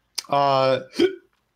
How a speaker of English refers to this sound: I have hiccups now, apparently.